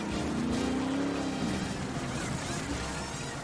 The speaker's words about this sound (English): The NASCAR Nextel Cup Series cars are on the track here at the Kansas Speedway, beginning the first of three pace laps before we get the green flag and start today's running of the Banquet 400.